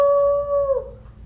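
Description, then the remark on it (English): A person gives one short, loud wolf-like howl as a breathing exercise, a steady held note that slides downward and fades out after under a second, with low background rumble beneath. “Another thing that's really fun to do with kids with breathing exercises is to howl like a wolf.”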